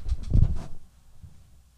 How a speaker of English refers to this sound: All right, I'm going to set y'all down. I'm going to open this bottle.